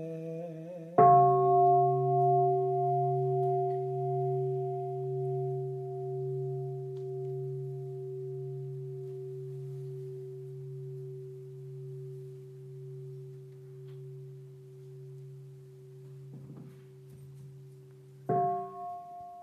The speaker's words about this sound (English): Listening to the sound of the bell, I feel the afflictions in me begin to dissolve. My mind becomes calm, my body relaxed, and a smile is born on my lips. Following the sound of the bell, breath guides me back to the safe island of mindfulness